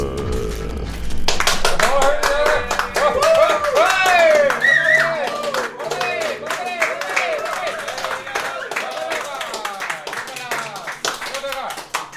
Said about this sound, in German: Die Applaus hier werden immer lauter. Freut bestimmt auch die Anwohner bei uns.